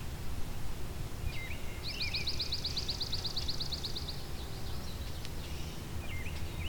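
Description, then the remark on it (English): A swamp sparrow's ringing trill: a fast, evenly repeated series of bright notes lasting about two seconds, set against a steady low background rumble, with a few fainter chirps before and after. “So it's that kind of ringing trill that is the swamp sparrow.”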